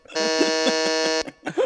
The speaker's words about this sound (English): Where's my buzzer? Where's my buzzer? Next.